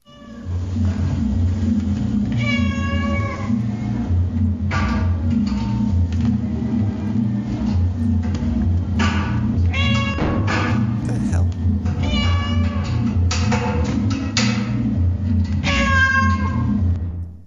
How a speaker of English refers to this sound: Sound like somebody was trying to poke that cat in his third eye chakra. I don't know. I mean, that might have been animal abuse.